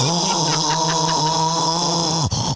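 A person snores loudly and steadily, a rough, buzzing drone with a rattling rhythm that carries through the whole moment, unaccompanied before briefly breaking off near the end.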